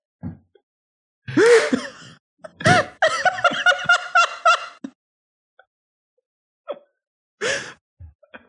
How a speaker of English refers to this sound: That's the fucking bumper right there.